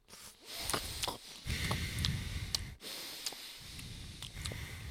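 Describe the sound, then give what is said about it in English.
A man vocally imitates Tony Soprano (as played by James Gandolfini) eating ziti: loud snorts and sniffs in irregular bursts with breathy pauses between them, no words spoken. “Yeah, my sniffing is James Gandolfini.”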